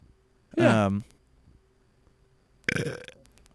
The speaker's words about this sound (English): that was when I burped.